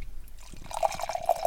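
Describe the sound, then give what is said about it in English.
A can of New Holland Brewing Company The Poet American Oatmeal Stout is poured into a glass, starting quietly and swelling into a steady stream of splashing and fizzing with small glugging bursts, no voices. “I'm going a little heavy on the pour.”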